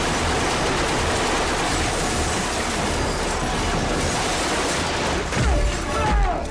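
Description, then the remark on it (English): A loud, dense barrage of rapid gunfire roars continuously, shots blurring into a harsh wall of noise, with a couple of heavier booming blasts near the end. “And did you hear all those gunshots?”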